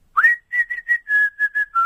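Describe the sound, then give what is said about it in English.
A person whistles a short, catchy pop tune, the melody of a Swedish band's whistling song, about eight clear notes in a bouncy rhythm with small pauses between them, and no talking. “But I did manage to whistle.”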